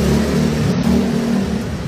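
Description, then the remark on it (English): A loud motorcycle engine revs and drones steadily for a couple of seconds, with a strong low rumble and no voices. “Can you drive off of your fucking motorcycle?”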